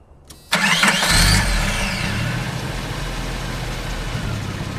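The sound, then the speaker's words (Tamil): After a brief quiet moment, a car engine cranks and catches with a sudden loud burst, then settles into a steady rumbling run that fades slightly as the car sets off carrying men going to collect loan interest. No voices. “அவருடைய அடியாட்களுடன் வட்டி வசூல் செய்ய காரில் செல்கிறார்.”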